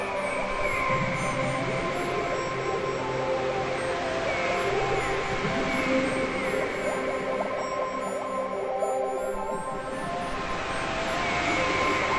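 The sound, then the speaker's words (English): The sea heard from under the water, a muffled, distorted wash of sound: a steady, loud rumbling drone with wavering tonal hums running through it for the whole stretch, with no voices. “So you hear the distorted sound under the water.”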